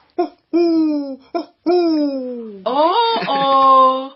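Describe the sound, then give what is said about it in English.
A human voice imitates an owl hooting as a clue in a children's bird quiz: a few short and drawn-out hoo calls in a steady rhythm, ending in a longer, wavering, higher-pitched hoot. Fairly loud, with no other sounds. “That is our friend, the wise old owl.”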